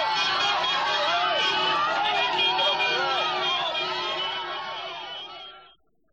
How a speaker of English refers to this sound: Following the game, Newcastle fans took to the streets, lining the route back to Marathon Stadium. Thousands stood roadside to cheer their grand final hero.